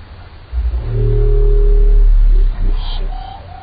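A minke whale bio-twang call: a deep, loud, buzzing drone with a twangy harmonic tone lasting about two seconds, then fading into a few brief, higher-pitched metallic sweeps.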